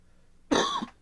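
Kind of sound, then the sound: human body sound, cough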